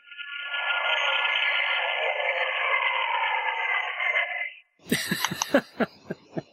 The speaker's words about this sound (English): It sounds like some kind of plane zooming past. You're on the right path. Spaceship zooming past. It is a spaceship, and it is probably zooming past.